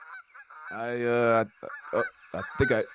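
A goose honks loudly: one long, drawn-out nasal honk followed by several shorter, rapid honks in an irregular burst, with no talking.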